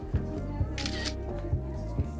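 A brief, crisp camera shutter snap rises over steady background music with a regular low thumping beat.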